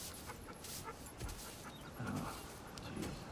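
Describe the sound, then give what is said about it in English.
A dog pants steadily, quick breathy huffs repeating over a low background hum with no one talking. “Damn, that dog's chill.”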